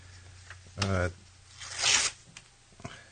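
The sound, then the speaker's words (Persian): Paper being cut into slips for writing names on for a draw, heard as two short, raspy ripping strokes, the second slightly longer and brighter, with faint rustling between them. “خب پس من اینو اینجا الان این کاغذ می‌برم.”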